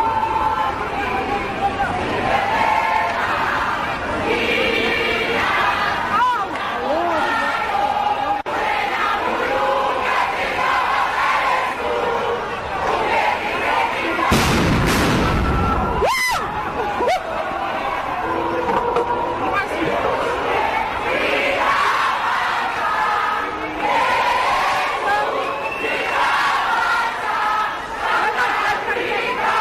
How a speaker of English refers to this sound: students who chanted Blade must fall, in addition to the earlier chants of fees must fall.